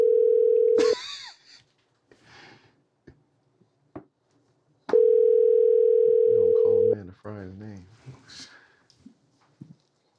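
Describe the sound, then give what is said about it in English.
A telephone call is dialed and rings out: a steady, loud, low-pitched ringing tone sounds twice, about two seconds each, with a few soft clicks and bits of people talking in between. “So let me go ahead and call”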